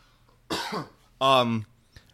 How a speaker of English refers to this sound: Excuse me one second as I cough.